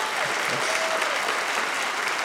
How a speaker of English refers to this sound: Round of applause in here if you have kids. Round of applause if you have kids.